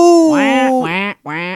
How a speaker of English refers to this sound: Who made the choice of the duck phone? Do you think the house just had the duck phone? I kind of think it did. Yeah. I bet you it did, and it just ended up being so iconic.